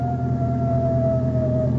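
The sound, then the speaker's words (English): Coyotes howling, a long sustained wail that slowly drifts downward in pitch, carried over a steady low rumble with no talking. “What's that? Coyotes. Ever heard them before?”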